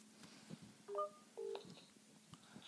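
A couple of short two-tone phone dialing beeps sound in quick succession as a group call is placed, clear, followed by a sharp electronic blip at the end over faint background noise.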